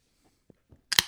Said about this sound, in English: And so let's hear it. Open it up. Crack that can.